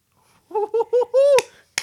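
One person claps for himself twice, two sharp isolated smacks spaced apart, right after a run of short, rising laugh-like vocal bursts.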